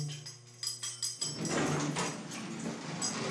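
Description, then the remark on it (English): Car keys jingle in a few quick metallic bursts over a low steady hum in a small room in front of an elevator, then a broad rushing noise rises and continues under more faint jangling. “Jingle jangle of the car keys sound.”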